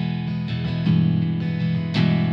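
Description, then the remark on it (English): Electric guitar set to its alpine spruce acoustic voicing (B setting), strummed in a steady run of chords with a bright, acoustic-like body and a touch of reverb shimmer from a Strymon Flint pedal, moderately loud, with no voices. “If I go to the B setting, it goes from spruce to alpine spruce.”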